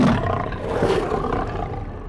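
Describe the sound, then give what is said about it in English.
A deep, sustained roar of a dire wolf rumbles for about two seconds, loud, with a guttural growling texture and no one speaking. “And just when they think they've escaped it, they find themselves face to face with a vicious dire wolf.”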